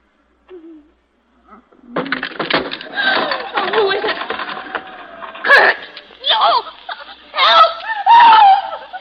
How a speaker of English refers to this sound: What made you scream, Mrs. …?